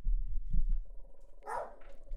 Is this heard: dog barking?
yes